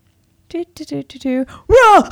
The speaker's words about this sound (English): Holy cow, that was loud. Uh-huh. The first thing that came to mind was a bear. You're close. A goose.